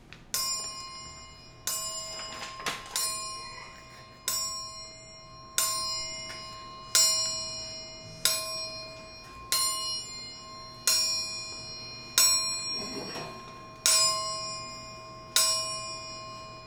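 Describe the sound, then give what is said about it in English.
A clock chimes twelve times at midnight, each bright, ringing stroke evenly spaced about a second and a half apart and fading before the next, with no voices. “There were the 12 chimes. That means it's midnight.”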